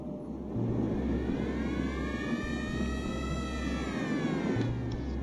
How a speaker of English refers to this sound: You hear in the distance a siren go off.